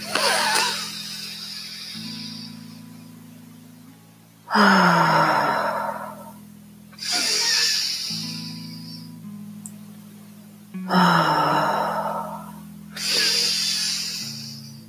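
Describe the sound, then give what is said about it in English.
Slow, deep breaths drawn in and let out during a guided chakra meditation, about four or five audible cycles with airy rushes and sighing exhales, moderately loud over a low steady hum. “Breathing deeply in.”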